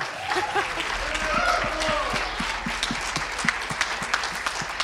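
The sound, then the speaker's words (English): A crowd breaks into steady, dense applause, a broad wash of many hands clapping at even loudness throughout, with a few cheers rising over the clapping. “I'm just saying he's probably worth a little more applause, you know?”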